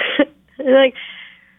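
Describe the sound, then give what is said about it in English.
Two harsh, intense coughs from a woman 24 weeks pregnant: a short rough burst, a brief pause, then a longer, strained, throaty hack that trails off into a rasp. “Well, I'm 24 weeks pregnant, as you know, and coughing an awful lot, and they're very, very intense coughs when they really happen.”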